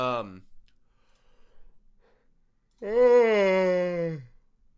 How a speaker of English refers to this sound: There it is. Jesus. Yawns in the chat. yawns in the beginning, man.